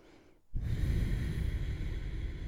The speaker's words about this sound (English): Breathing. Don't let go of that bottom belly breath. Take another massive inhale.